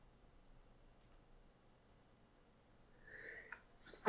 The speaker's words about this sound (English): Sorry about that. That was a long wind-up. Yeah. I'm going to leave that in so people can hear how long it took for that sneeze to happen.